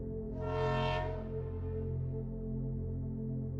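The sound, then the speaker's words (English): A steam train's horn blows a long, steady blast that swells brightly near the start, then settles into a sustained, slightly fading tone over a low rumbling background. “You hear the train horn blowing,”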